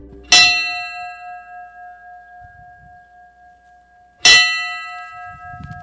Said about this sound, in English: The bell tolled Sunday for the victims, families, and survivors of 514-22.